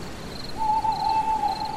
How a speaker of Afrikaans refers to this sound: Nou en dan het 'n uil van hom laat hoor